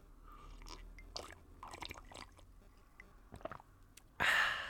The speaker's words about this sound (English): And yes, I do exaggerate my slurping when I'm on the podcast. I don't normally slurp like that.